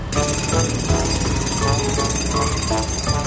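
A loud construction drill used by builders working on a house hammers away continuously, a dense, rattling mechanical roar that stays steady for the whole stretch with no voices over it.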